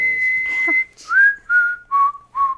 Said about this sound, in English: I like your whistling, just not straight into a microphone, straight to my earphones.